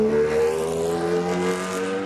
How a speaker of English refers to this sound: In Talladega Nights, when Ricky Bobby wanted to go fast around a NASCAR speedway, he drove a race car that sounded something like this.